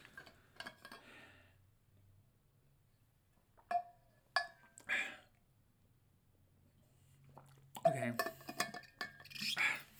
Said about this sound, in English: So, let me just drink some water here, guys.